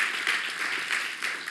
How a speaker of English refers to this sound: Can we give a round of applause for these two? Yes, I'm glad.